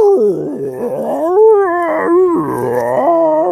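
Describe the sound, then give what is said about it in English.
A voice mimics a gurgling stomach with whale-like noises: long, wavering, pitch-sliding moans and howls, fairly loud, running continuously for several seconds with no words. “It starts making whale noises.”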